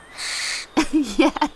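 Rainforest bird calls ring out in hot, humid air: a high, buzzing trill holds for half a second, then a run of lower, swooping hoot-like notes follows in quick succession, with no one speaking.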